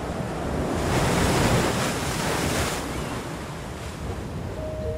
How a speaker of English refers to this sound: Bright aqua waters crash against tall, ragged cliffs.